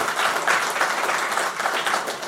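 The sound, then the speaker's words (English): An audience applauds steadily for a fellow church brother, many hands clapping together in a dense, continuous wash of sound that holds at an even level throughout, with no voices standing out. “Just a round of applause for our dear brother.”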